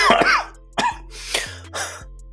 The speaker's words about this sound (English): He, like, coughs from the fight he just had with you.